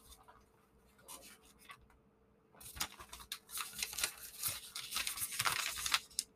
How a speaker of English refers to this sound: All right, the paper's been flipped.